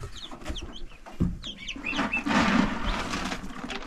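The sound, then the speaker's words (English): Several chickens, including new chicks, cluck and chatter, with scattered short calls and soft peeping over a busy, rustling background, continuing steadily without any talking. “So you like seeing the new chicks or what?”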